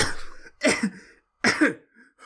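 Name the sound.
person coughing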